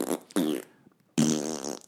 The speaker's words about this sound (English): I think it's the scientific lab stuff that's making me fart. Not the French fries are really getting them. At least they didn't stink, though. It was just like... Just air.